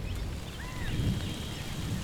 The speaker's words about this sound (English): And then there's the rain, every pot farmer's worst nightmare. It causes mold, which can destroy your crop. Everything's going to get soaked, things are going to start to rot.